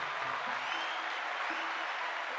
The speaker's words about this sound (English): Let's give Julian a round of applause.